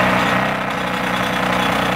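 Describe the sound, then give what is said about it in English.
Loud, continuous mechanical drilling noise from neighbours next door early in the morning, recorded on a phone, with a steady rapid pulse, harsh and dense across the whole two seconds, with no voices. “So drilling of a different kind.”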